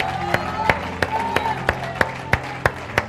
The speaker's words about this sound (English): Give the Lord a hand clap of praise. Give him a shout. Hallelujah.